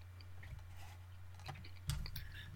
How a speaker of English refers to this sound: Mm, Hang on, I'm chewing, but I have a thing on that.